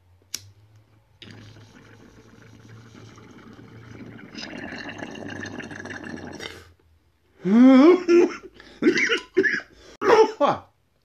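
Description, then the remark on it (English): A sharp click, then about five seconds of steady water bubbling through a bong that grows louder toward the end, followed by a run of around five harsh, raspy coughs. “But first, before we continue this article, I'm gonna hit my bong.”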